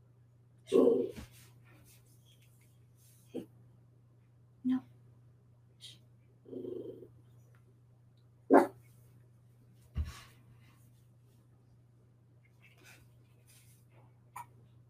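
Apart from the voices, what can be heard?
dog barking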